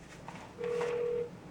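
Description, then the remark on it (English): A single steady electronic telephone keypad tone sounds for well under a second, clear over a faint background hiss, with no one talking, as phone calls are made on January 3rd, 2013. “Hours every day, I'd make phone calls.”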